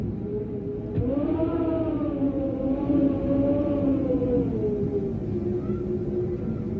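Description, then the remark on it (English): Blizzard wind howls steadily, a wavering, moaning whistle that rises and falls in pitch over a constant low roar, loud throughout with no voices. It is the first of many blizzards blowing in, from The Long Winter, set in Dakota Territory. “No, the first of many blizzards is blowing in.”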